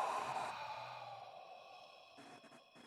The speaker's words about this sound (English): So another deep inhale in through your nose. Breathing down to your gut if you can. And open mouth, exhale.